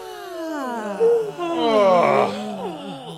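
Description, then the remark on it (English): A long, voiced yawn made as a warm-up stretch stretches out for about three seconds, a breathy moan whose pitch slides down, swells in the middle, then trails off, with no talking over it. “Let's start by warming up with a good yawn stretch.”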